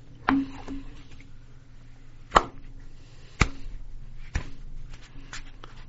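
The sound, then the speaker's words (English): A slow clap: four sharp, single hand claps spaced one to two seconds apart, each crisp and bright, over a faint steady hum with no voices. “That was a slow clap.”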